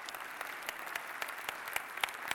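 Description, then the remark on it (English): An audience claps steadily, a dense wash of many hands, with a few brief cheers or whoops rising near the end. “Put your hand, cheer her on.”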